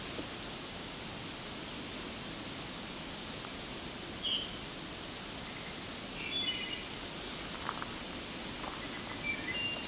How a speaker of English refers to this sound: Whip-whip, that's a whip-whip of a wood thrush.